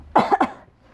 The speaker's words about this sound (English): This is going to be death reading this with this cough.